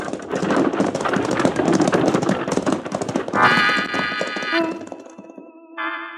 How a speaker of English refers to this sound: the Arbuckle Kid straightens up from his crouching position, slaps the near horse on the rump, and triggering his shotgun, sends the driver and his team off toward the nearest town in a cloud of dust.